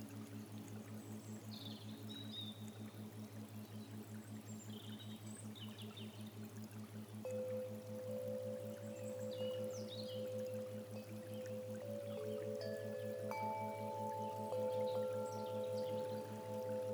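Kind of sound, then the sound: nature, flowing water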